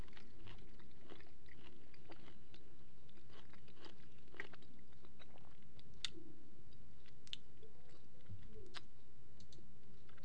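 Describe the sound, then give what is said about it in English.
Someone chews and crunches food with a steady run of moist, crackly bites and sharp clicks, repeating irregularly over a low, steady background hum, with no talking. “I'm eating.”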